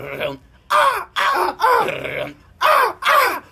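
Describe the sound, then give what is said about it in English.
A voice makes short, gritty, harmonic bursts in a choppy rhythm, about five loud hits grouped in pairs with brief gaps, imitating staccato galloping guitar chugs, fairly loud. “I could do like some staccato, like some like galloping chugging, like.”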